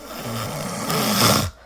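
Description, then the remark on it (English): Loud snoring from a woman: a sustained, rattling breath that swells into a big snorting inhalation near the end, then cuts off abruptly. Prominent, with no voices. “So she starts out fairly low-key and rhythmic, and then you get that kind of... Snortle.”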